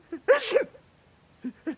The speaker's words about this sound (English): Herschel, are you sneezing again? No, Aggie, it's just allergies.